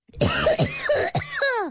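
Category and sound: human body sound, coughing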